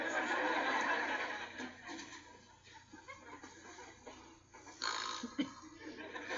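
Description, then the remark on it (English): A person fakes snoring, making a few breathy, rasping snorts that sound a bit like stifled chuckles, moderately loud over a steady background hiss. “Fake snore.”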